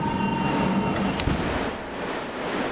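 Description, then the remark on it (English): A loud, steady roar of wind rushing through an airlock door that has just been opened onto a vast void, with a faint mechanical hum underneath at first that cuts out partway through, leaving only the broad howling rush. “His delivery is drowned out by a sudden explosion of wind.”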